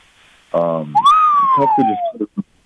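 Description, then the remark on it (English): A person whistles one clear, sliding note that falls slowly in pitch over about a second, fairly loud, with brief bits of voice just before and overlapping its end. “Pardon my whistle.”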